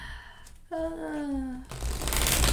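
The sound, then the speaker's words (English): A sustained hummed voice tone drifts downward, then gives way to a dense rustling burst of a deck of cards being shuffled, with quick papery flutters running for about a second. “So while you're there, just connect again to your breath while I shuffle these cards.”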